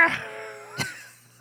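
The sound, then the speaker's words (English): A person vocally imitates a yowling cat being flung over someone's shoulder, a drawn-out wavering wail with bright harmonics that bends in pitch, framed by short breathy bursts at the start and end. “And I think you like fling him over your shoulder, and the cat is just like.”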